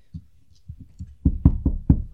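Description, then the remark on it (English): A series of knocks on a door: softer, muffled raps at first, then four louder, sharper knocks in an even rhythm, with no voices. “I knock.”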